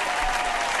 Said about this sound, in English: Oh, you've brought the crowd noises. Is this what you were talking about? I got hotkeys.